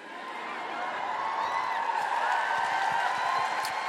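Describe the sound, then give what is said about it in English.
An audience at the Royal Albert Hall cheers and whoops for Greta Thunberg in a steady, sustained roar for a few seconds, with many overlapping voices and scattered high shouts, and no single speaker standing out. “Yeah, you can cheer Greta Thunberg.”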